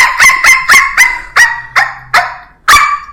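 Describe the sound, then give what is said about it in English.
A person imitates a dog with a rapid string of about eight sharp, loud barks, in an uneven rhythm with a brief pause before the final bark. “Yeah, I can cry like a baby and I can bark like a dog.”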